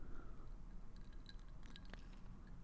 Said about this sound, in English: Let me take a sip. Hold on.